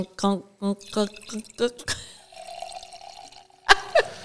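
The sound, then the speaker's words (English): Wine is poured into a glass as a refill in a studio, a steady, gurgling stream lasting a second or two, preceded by short bursts of voices and followed by a brief louder sound. “Don't know whether somebody's peeing in the studio or there's wine being poured.”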